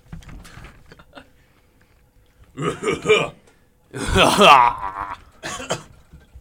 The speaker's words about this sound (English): Now, speaking about coughing...